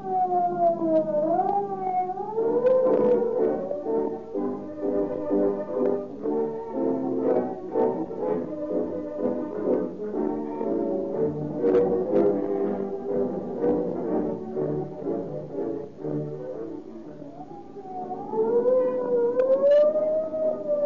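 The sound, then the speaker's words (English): A loud police siren wails in rising and falling sweeps as police cars tear past, fading into a dense, busy wash of sound before the wailing siren returns near the end. No one speaks. “When you hear the scream of the siren and police cars go tearing past, let it remind you that more police cars use Rio Grande cracked gasoline than any other brand.”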